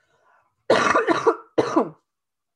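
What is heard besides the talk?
cough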